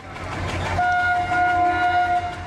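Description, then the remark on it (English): A train rumbles along the tracks, its steady low rolling noise joined partway through by a long, sustained horn blast. No voices are heard. “India's trains are notoriously chaotic and confusing.”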